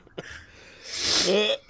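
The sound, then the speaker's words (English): A short click, then a rough, noisy throat clearing that rises into a raspy voiced rumble, fairly loud, with no talking. “Just had to clear my throat.”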